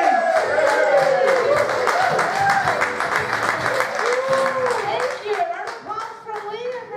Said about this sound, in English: Start making some noise, some whoops and cheers. And welcome to the stage.